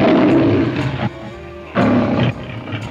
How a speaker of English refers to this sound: Here's the first one with sound, from 1928. This roar was made by a lion named Jackie.